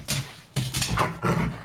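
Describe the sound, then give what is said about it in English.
A Doberman dog named Bear growls in three rough, throaty bursts, each a low rumble with a harsher, noisier edge, fairly loud and with no one talking. “Bear growls.”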